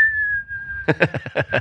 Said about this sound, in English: You know who can actually whistle time.